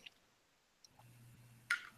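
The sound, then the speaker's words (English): A few soft, scattered clicks from a mouse scroll wheel while scrolling down, quiet, with a faint low hum coming in partway through and a slightly louder click near the end. “Scrolling down here.”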